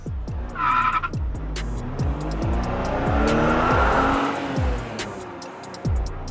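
A car brakes hard and its tires skid with a loud, sustained squeal over engine rumble, ending with a few thumps and a brief high chime.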